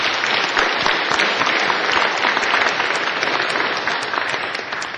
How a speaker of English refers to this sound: So I really appreciate their effort. We wouldn't be in this chamber tonight without them. So I want to thank everyone and give them a round of applause, if you would.